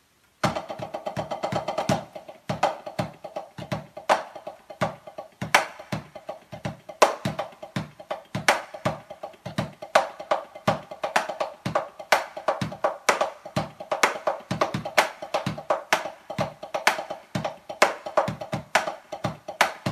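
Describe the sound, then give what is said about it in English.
A drum kit plays the metric modulation shuffle exercise from Carter McLean, with dense, evenly spaced hits, bright cymbal-like wash and a ringing mid-pitched drum tone that continue without pause. No voices. “So here it is, the exercise that I got from Carter McLean. It's the metric modulation shuffle.”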